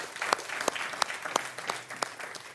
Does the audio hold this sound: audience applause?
yes